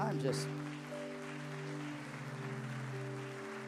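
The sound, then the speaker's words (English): A church audience claps hands in praise of Jesus after a prayer, a steady, dense wash of applause, underneath loud sustained organ-like chords and a held voice. “Come on, and just, will you just give Jesus another hand clap of praise?”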